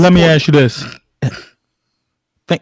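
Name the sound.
throat clearing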